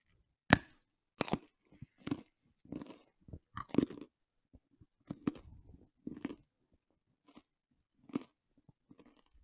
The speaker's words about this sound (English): ASMR, which includes drinking a drink, chopping carrots, chopping an apple, eating an apple, crushing a bag of chips.